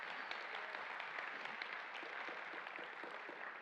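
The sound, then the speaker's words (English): An audience gives God a hand clap, a steady, dense wash of applause, many overlapping claps sustained at an even level for several seconds with no voices over it. “Would you give Him a hand clap if you believe that?”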